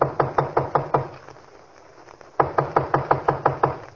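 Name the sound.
knocking on a door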